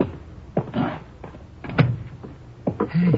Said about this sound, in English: Door's open. Go in.